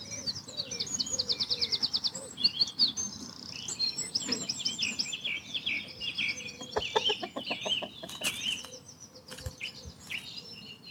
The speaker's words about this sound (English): It is interesting, you sort of learn their language. That noise you heard there was a chicken that's spotted the approaching cat.